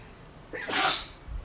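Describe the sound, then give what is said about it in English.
A single sharp, fairly loud sneeze, with a short intake of breath just before the burst. No talking accompanies it. “Hold one second, fam. I'm about to sneeze.”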